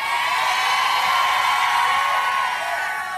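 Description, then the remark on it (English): A large audience at a sermon yells and cheers loudly for a few seconds in answer to the preacher's question, a dense, sustained roar of many voices at steady volume with no one speaking clearly over it. “Well, you don't have to yell, just...”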